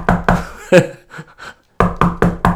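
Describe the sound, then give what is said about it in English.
Loud knocking on a door: two raps, a heavier single thud, a brief pause with faint murmuring, then a quick, even burst of four more knocks. “So you hang around, don't you, because you think you're going to get the knock on the door.”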